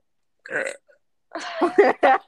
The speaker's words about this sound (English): I'm about to burp, but you gotta cut it out.